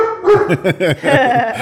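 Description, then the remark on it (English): A dog named Tank, excited after hearing a keyword he responds to, barks in a quick burst of about five or six sharp, excited yaps followed by a higher, whining bark, loud and without any talking over it. “there's a couple of keywords that he knows that he responds to.”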